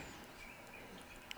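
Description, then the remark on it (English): Faint birds chirping over a steady hiss, a few thin high tweets scattered through it and one brighter, sharper chirp near the end. No one speaks. “Oh, there's the birds.”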